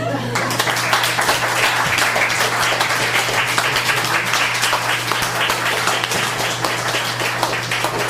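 A crowd applauds steadily, a dense wash of many hands clapping at an even, loud level throughout, with no distinct voices rising above it.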